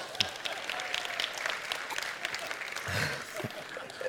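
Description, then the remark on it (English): A crowd breaks into steady applause, dense clapping filling the whole stretch at a moderate, even level with no one speaking over it. “And I actually think Yorkshire just deserves a massive round of applause.”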